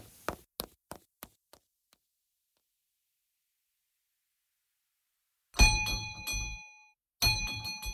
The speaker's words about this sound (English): Ring the bell. I'll hear it. Ring it loud.